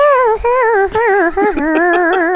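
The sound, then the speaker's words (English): A person imitates a cat singing R&B, holding one loud, continuous meow-like wail that bends and wavers in pitch with soulful runs and vibrato for a couple of seconds. “I can do an R&B cat singing.”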